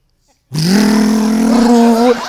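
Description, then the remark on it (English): A voice imitates a wife vacuuming the house with a loud, steady droning hum that rises slightly in pitch at the start and holds for about a second and a half before cutting off. “Vacuuming.”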